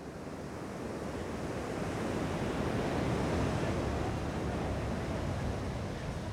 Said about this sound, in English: We walk down to the beach where the wall stretches into the ocean, and we're mesmerized by the way that the waves break awkwardly against the wall. The metal posts disfigure the waves, but they can't stop them from coming.